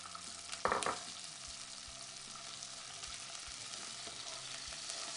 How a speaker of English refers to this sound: So what we're going to do, and this pan is hot, we're going to mix that oil around. Frog's legs are going in. I want to make sure all that excess water is out.